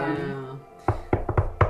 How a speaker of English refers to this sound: So you walk up to Miss Martha's door. Yeah. And what do? I do my usual knock so that she knows it's me.